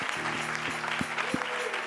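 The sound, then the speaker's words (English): An audience at an evening church service applauds their pastor, a dense, steady wash of many hands clapping at once, fairly loud, with a low sustained hum underneath. “Why don't you give your pastor a hand clap tonight?”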